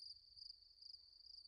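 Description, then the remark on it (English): Crickets chirp in a steady high-pitched trill that swells and fades in a regular rhythm, with a low rumble underneath and no one talking. “So one of us has a Valentine, the other is working. Crickets.”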